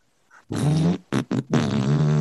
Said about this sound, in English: So he tries his best to get there, letting out consecutive farts along the way.